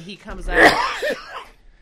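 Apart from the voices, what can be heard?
sneeze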